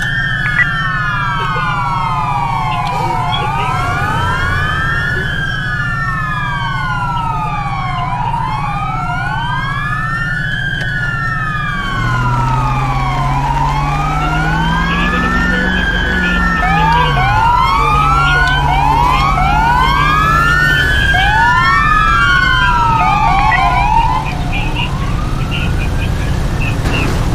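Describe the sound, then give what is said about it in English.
A loud fire truck siren wails continuously in overlapping rising and falling sweeps over a deep rumbling engine drone that shifts pitch partway through. “I'm gonna move this fire truck out the way and get tow for it.”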